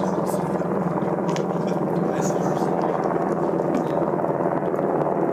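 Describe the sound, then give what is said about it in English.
An airplane passes overhead, its loud, steady engine roar filling the air in a continuous broad drone that holds level for several seconds without fading. “I'll just wait until the plane passes over.”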